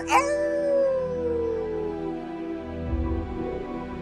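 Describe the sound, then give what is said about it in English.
A single drawn-out wolf howl starts high and slowly slides downward, fairly loud, trailing off over a few seconds above a low, sustained tonal backdrop. “The Wolf.”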